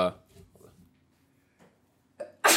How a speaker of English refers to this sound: bless you.